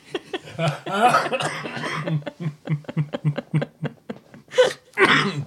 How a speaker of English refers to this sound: Well, now it's time, as I'm in the midst of another coughing fit.